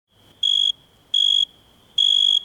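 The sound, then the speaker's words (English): A male cricket chirps by rubbing its wings together, three shrill, high-pitched bursts spaced evenly apart, loud, over a faint steady background hum with no voices. “Crickets make that chirp chirp sound by rubbing their wings together.”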